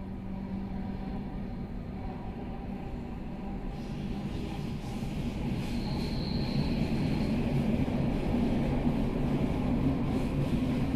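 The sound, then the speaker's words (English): Steady rumble of a train running on rails from Paris to Zurich, a dense low roar with rattling texture that grows slightly louder and brighter midway, a faint high whine briefly riding on top. “I'm on a train to Zurich. It's a four-hour ride from Paris.”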